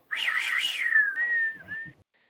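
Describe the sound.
A person whistles a short melodic phrase from a western film theme, starting with a quick wavering run and then sliding down into a long, steady held note, with no talking.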